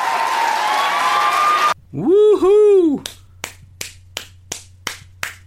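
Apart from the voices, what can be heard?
audience applause and cheering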